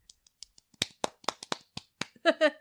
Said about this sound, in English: We need to give them a round of applause.